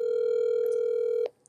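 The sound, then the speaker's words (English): A steady electronic outgoing call ringing tone on a laptop, calling a guest, hums at one pitch for just over a second, then cuts off abruptly with a faint click, leaving near silence. No voices are present. “Maybe they should be able to hear it ringing.”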